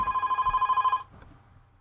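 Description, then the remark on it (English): A telephone rings with one rapid, trilling electronic burst lasting about a second, then cuts off abruptly. No one speaks. “There's a phone in here?”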